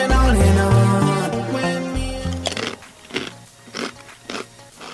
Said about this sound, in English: Earlier this morning, we gave the FBI staff a flavour of crisp/biscuit and asked them to take a bite and describe the flavours that they feel.